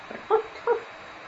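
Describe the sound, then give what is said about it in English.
Two quick, faint dog barks come from up the stairs of a building, one right after the other, against quiet room tone with no one speaking. “If you made the listen test, you hear up these stairs, you hear a very faint sound of a dog barking.”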